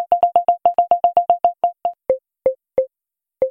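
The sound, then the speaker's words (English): A rapid series of short electronic beeps from a phone's people-detection feature slows down, then shifts to a lower pitch with wider gaps, tracking a person moving past. Clear, with no voices. “So yeah, if you've got both earbuds in, you can hear where the person is left to right as they cross your path.”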